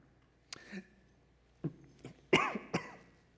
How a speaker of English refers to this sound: That looked like I was about to throw up, but it wasn't throw up. I was merely trying to hide my cough, but I almost puked in the process.